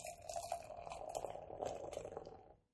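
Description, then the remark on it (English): A 4% ABV malt beverage brewed with natural flavor pours steadily into a glass for a few seconds, a continuous splashing, fizzing stream with no talking, ending abruptly. “Pouring it out.”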